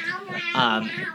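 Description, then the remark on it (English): A child pretending to be a kitty cat gives one drawn-out, wavering meow that swells in the middle, heard on its own without any talk. “can you be a whispering kitty cat?”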